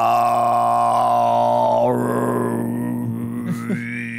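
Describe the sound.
Tuvan throat singing: a deep, buzzing vocal drone held steadily throughout, with a thin whistling overtone following a pentatonic scale gliding above it, dipping then rising in pitch toward the end.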